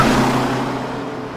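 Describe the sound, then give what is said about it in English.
A loud bus rumble in a movie scene, a low droning engine tone that holds steady, then slowly eases off, with no voices over it. “gets hit by a bus.”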